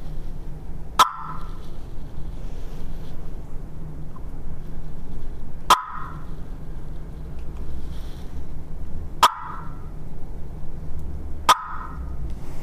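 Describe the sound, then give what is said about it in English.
Four sharp, loud gobbler clucks made on a turkey call, spaced a few seconds apart, each a quick single pop over a low, steady background rumble with no talking. “This is a gobbler cluck.”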